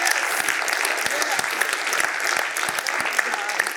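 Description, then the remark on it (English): An audience breaks into steady applause to honor a man who served in the military, many hands clapping in a dense, continuous patter that holds at a fairly loud level for several seconds with no one speaking. “But he has served his country with honor and distinction, and you should give him a hand clap, amen, and bless God that he was there on the wall.”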